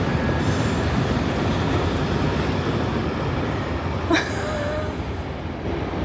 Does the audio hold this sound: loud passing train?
yes